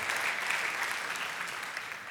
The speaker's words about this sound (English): give the Lord, give yourselves a clap, you know.